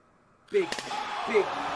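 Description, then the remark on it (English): A wrestling chair shot sound effect: a single loud, sharp smack lands after a brief near-silence, followed by a second of sustained rough noise with faint voice-like tones underneath. “We needed that chair shot.”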